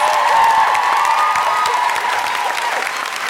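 A crowd claps loudly and steadily, with dense overlapping hand claps and scattered whoops and cheers rising above the applause throughout.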